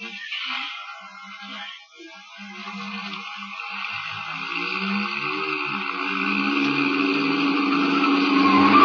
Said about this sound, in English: Jenkins, be careful. You turn that corner on two wheels.